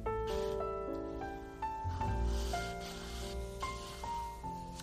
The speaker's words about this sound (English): And then there's just that smooth ocean sound. I'll play it for you. Give me a sec.